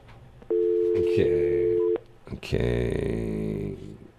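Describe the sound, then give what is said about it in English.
A steady, clear telephone dial tone hums for about a second and a half while a call is being placed, then cuts off and a person starts speaking. “Let's call my son. Hold on a minute. Let me see if chances are he won't answer the phone.”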